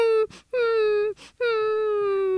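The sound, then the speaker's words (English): A female pet dog whimpers on the other side of a door in three long, steady high-pitched whines, each sliding slightly downward, separated by short breathy intakes. No one speaks. “No, but we should definitely end because our daughter is crying on the other side of the door.”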